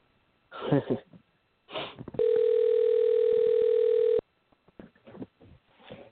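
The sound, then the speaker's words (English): A telephone ringback tone sounds once as a steady, loud two-second burst, heard clearly over the line, with faint breathy noises and indistinct mouth sounds just before and after. “It's ringing.”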